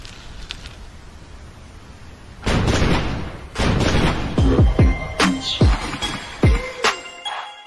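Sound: cannon fire sound effect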